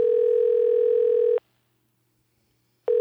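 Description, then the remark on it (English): A telephone ringback tone on an outgoing call: a steady electronic buzz lasts over a second, falls silent for a moment, then starts again. It is clear, with no voices. “It's ringing.”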